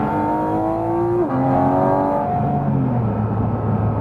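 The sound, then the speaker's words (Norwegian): Powerful car engines roar in an impromptu race with a black Taycan Turbo S, accelerating hard, pitch climbing steadily, dropping briefly at a gear change, then climbing again. Loud throughout, with no talking. “Og han tok det som en invitasjon til kjøreoppkapp, selvfølgelig.”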